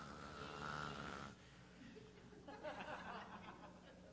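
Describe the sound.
A church audience imitates snoring together in unison in a loud, rasping burst, then breaks off into scattered chuckles and laughter.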